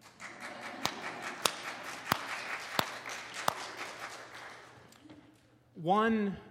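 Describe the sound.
An audience applauds in a steady, dense wash of clapping, punctuated by a few sharp, louder claps at roughly even intervals, then the applause fades and a voice starts talking.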